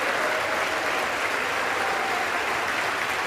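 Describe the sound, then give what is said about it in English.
Loud, sustained applause from Republican lawmakers in the House of Representatives chamber as Mike Johnson of Louisiana is elected Speaker of the House. A dense, steady roar of clapping continues with no breaks, and no voices stand out above it. “Republicans applauding following 22 days of chaos without a Speaker of the House.”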